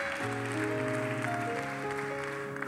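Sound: audience clapping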